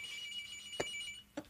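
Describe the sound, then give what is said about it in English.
The phone line of the show Ben Talks rings with a caller: a steady, high trilling tone at moderate volume, punctuated by two sharp clicks partway through. No one speaks. “You think you gotta answer that phone?”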